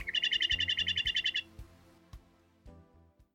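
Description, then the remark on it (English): Song of a western meadowlark, a prairie bird: a loud, fast run of about a dozen bright, high chirps for roughly a second and a half, then fading into quieter low knocks and rustles, with no talking. “It thrives in prairie land and is so popular 'tis the state bird for Kansas and 5 other states, Montana, Nebraska, North Dakota, Oregon, and Wyoming.”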